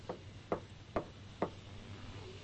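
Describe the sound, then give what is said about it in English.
Four soft knocks on a door, evenly spaced about half a second apart, fairly quiet, with a low background hum and no voices. “Assertive, shameless knocking.”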